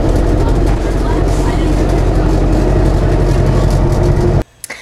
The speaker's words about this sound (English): But, you know, here's the bus. This is a CATA bus. What are you doing? I'm taping the bus.